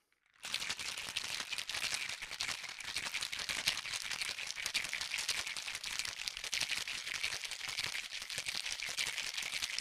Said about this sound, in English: Cover the shaker up. And now for the shake.